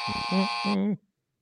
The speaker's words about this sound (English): Is there a cooling off period for the buzzer?